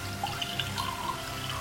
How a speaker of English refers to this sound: So let me pour one out for ya.